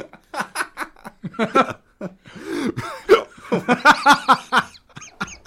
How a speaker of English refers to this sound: That's a live hiccup on radio. Oh, wow. I just sort of broke there, didn't I?